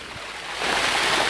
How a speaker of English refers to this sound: Another river I have to cross. I'm gonna have to jump this river. Can you hear it?